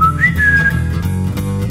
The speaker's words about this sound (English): For the past 3 hours now, my butthole still whistles when I walk.